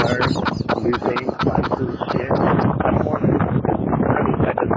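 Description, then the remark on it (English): Hurricane Dorian's wind roars over a live phone call from someone in the back of a truck, a loud, continuous rush of noise broken by crackling, buffeting bursts, with no clear voice coming through. “This is a phone call live from Hurricane Dorian.”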